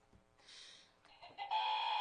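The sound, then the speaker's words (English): A battery-powered game show buzzer being tested sounds, a brief hissy burst, then a loud, steady harsh buzz that holds to the end, with no talking. “Now we got a buzzer sound.”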